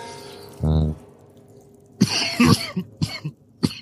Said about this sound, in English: Is that Jambalaya coughing or Drunda coughing? I think it fits for Jambalaya.